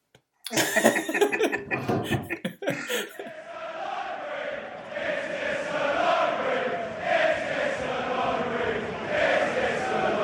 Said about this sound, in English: Oh, mate, I'm so glad because I needed to cough right. So bad.